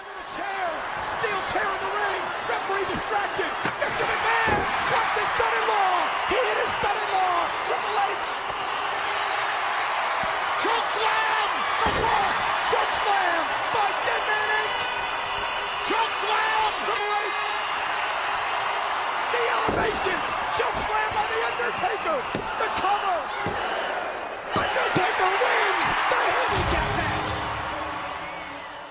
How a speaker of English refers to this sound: Undertaker goes for the pin, and as you've just heard, he got the one, the two, and the three